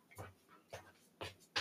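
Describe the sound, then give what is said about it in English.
A dog pants in quick, rhythmic bursts of breath, about four in a row, with a faint whimpering whine between them and no talking; dogs in a room during a recording. “The dogs are not letting us record.”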